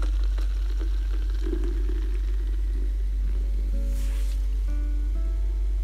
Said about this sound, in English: Here, let me pour you a nice large glass to refresh your palate and loosen your larynx, O noble knight.